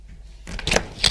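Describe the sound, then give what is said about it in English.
A door is pushed shut, with a soft rustle followed by two sharp latching clicks a fraction of a second apart, heard on its own. “we're gonna have to shut the door.”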